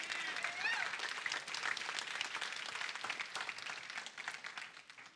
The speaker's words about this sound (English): Let's give her a hand clap.